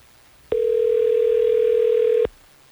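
A single steady electronic phone tone, like a dial or ringback tone, sounds clearly for nearly two seconds as hosts of the Hot 101.5 radio show in Tampa Bay phone a listener, then cuts off abruptly, with no talking.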